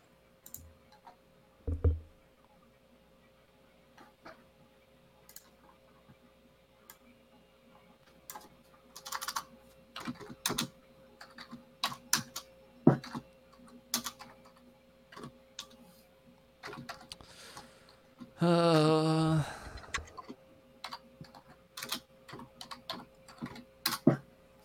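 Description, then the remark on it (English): Keys clack on a computer keyboard in uneven bursts and pauses, fairly quiet, with one brief squeaky whine near the end. No one speaks. “What are you sound like you're typing a paragraph over there.”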